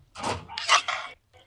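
A toy topples over with a rattling clatter, a few quick bumps and scrapes run together for about a second before cutting off, leaving a faint rustle afterward.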